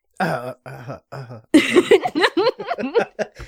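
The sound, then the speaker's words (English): A person clears their throat in three short, gravelly rasps, one after another, then starts talking right after. “Nobody wants to hear me clear my throat.”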